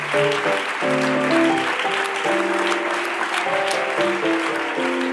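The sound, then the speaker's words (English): A large crowd claps steadily and continuously in praise of the Lord after preaching, a dense wash of applause, while sustained keyboard or organ chords ring underneath throughout. “Give the Lord a hand clap of praise right now.”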